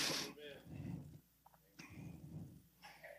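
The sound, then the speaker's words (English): A small baby coughs in a few short, rough bursts spread over a few seconds, fairly quiet, with a low rumbling background between the coughs. “Oh, is that a little baby? Lord, we pray that little baby, that little cough go away in Jesus' name.”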